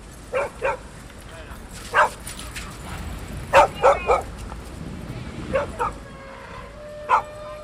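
Dogs bark in sharp, scattered bursts, some single yaps and some quick doubles and triples, over a steady murmur of outdoor background noise.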